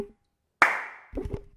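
A single sharp hand clap rings out after a moment of silence and decays over about half a second, followed by a few low, muffled thumps and rustles.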